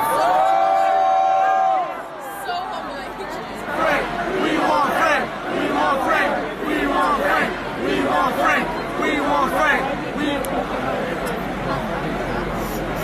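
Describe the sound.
A large festival crowd boos loudly, a dense, sustained roar of many overlapping voices that carries on for the whole stretch after a brief drawn-out tone at the start.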